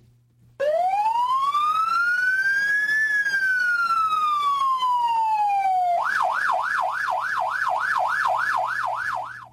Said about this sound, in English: Would be funny if I thought the problem was with the siren, so I bring a better siren this week.